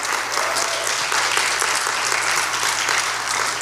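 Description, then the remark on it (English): A church audience bursts into sustained applause and cheering for the Holy Spirit filling the people at Pentecost, a dense wash of many hands clapping at steady loudness throughout, with scattered shouts mixed in and a low hum underneath. “Can we cheer for when the Holy Spirit filled the people on Pentecost?”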